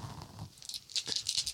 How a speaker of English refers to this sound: Can you roll medical aid to see how they died? I gotta roll so many dice right now. Let's just do it in groups. Plus, remember, you got one stress dice as well.